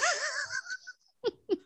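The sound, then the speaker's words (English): A wavering, laugh-like vocal sound fades out, then two sharp, breathy sneezes burst out in quick succession, each short and fairly loud. “Bless you.”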